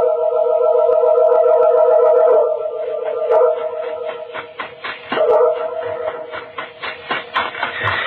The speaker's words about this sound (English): There's a man with a dog. It's just like the dog you owned. The one that died in the fire.